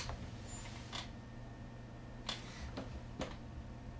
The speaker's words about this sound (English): Sorry, Dirtball knocked something over.